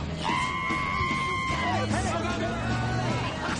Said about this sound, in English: Cars are leaving the ferry.